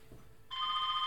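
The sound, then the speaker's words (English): A telephone starts ringing abruptly partway through, a bright, steady electronic trill that holds at even loudness until the end. No one speaks. “Oh, yeah, the phone rings, of course.”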